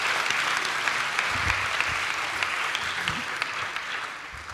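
An audience applauds steadily, a dense wash of clapping with scattered cheers and whoops rising over it, sustained at an even loudness for several seconds before easing slightly at the end.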